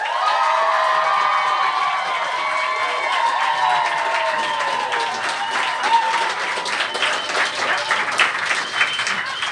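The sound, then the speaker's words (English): An audience applauds and cheers to vote for Robert Dean with Candy Crush, steady for several seconds, dense clapping mixed with high whoops and shouted voices that glide and fade, the noise staying loud throughout. “So with your applause, starting with Robert Dean, Candy Crush.”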